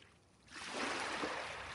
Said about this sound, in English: Waves lapping the beach, wind bending the trees and the tides pulling the pebbles along the shore.